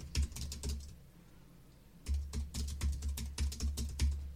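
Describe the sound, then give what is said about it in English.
Crisp typing on a computer keyboard: a quick burst of keystrokes, a brief pause of about a second, then a longer run of steady clicking, with no voices. “Okay, someone has genuinely hacked into my Alexa thing, and it wasn't just me when I was just typing just then, right?”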